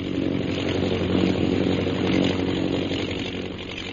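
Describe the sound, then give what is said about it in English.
A propeller airplane engine drones steadily overhead, a low buzzing hum with a rough, motor-like edge that swells slightly and then eases, continuous throughout with no voices, as the plane flies back toward the scene of a bombing. “Meanwhile, in the plane overhead, Captain Carstairs directs his pilot, Lieutenant Rogers, to fly back toward the scene of the bombing.”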